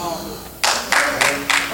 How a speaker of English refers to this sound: Oh, y'all ain't got to clap. It's the truth and y'all know.